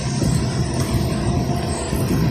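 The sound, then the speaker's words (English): A steady, loud rumble of a train running alongside, with dense low-frequency roar and constant rattling texture throughout, no voices. “The train's still beside us. It's pretty loud.”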